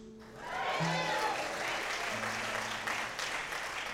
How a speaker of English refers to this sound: I appreciate that courteous applause.